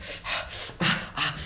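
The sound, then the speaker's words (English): A voice imitates the heavy breathing of a pregnant woman: four quick, loud, rasping breaths in a steady rhythm, with no talking. “She grabs it really tightly, and I hear heavy breathing.”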